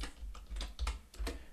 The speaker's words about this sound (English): hang on, where's Google Translate? Other translation tools are available. Sorry, you can just hear my keyboard tapping away.